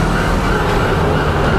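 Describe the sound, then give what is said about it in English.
A police siren from a squadron of police cars chasing the Batmobile through traffic wails loudly and steadily over a dense, rumbling wash of engine and traffic noise, its pitch wavering only slightly across the short stretch. “A squadron of police cars was chasing him, along with a helicopter.”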